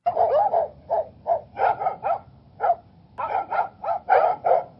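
A dog barks over and over in quick, uneven bursts, about a dozen sharp barks with only brief pauses between them, and no one speaking.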